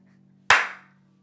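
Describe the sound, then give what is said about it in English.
A single sharp hand clap, made to try to start a device recording, cracks out over a steady low hum, its bright burst fading quickly, with no one talking. “Wait, let me try to clap and see if it starts recording.”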